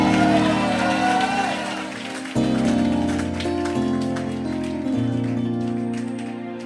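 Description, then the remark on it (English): An audience claps and shouts for Jesus in a dense, steady wash of applause and cheering voices, with sustained organ-like chords shifting underneath throughout. “And if you are happy about what I'm saying, I want you to clap your hands and give Jesus a wonderful shout.”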